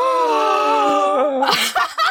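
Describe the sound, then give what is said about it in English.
A group of people gasp together: a loud, drawn-out collective vocal reaction, then a few sharp, breathy intakes and half-laughs at the end. No words are spoken. “We all just gasped.”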